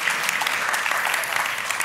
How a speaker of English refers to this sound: Okay, I'm clapping.